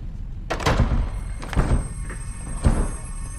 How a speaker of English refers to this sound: you've broken the door.